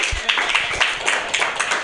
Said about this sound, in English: Round of applause for him. Round of applause for Jesus showing up to his roast.